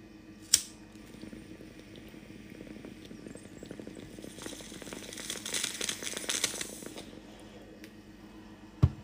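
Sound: water bubbling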